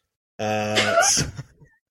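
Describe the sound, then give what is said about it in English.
A short bus sound effect: a steady, buzzy horn-like tone gives way to a brief hissing, rushing burst, then fades out within about a second and a half. “Can I play the bus noise again?”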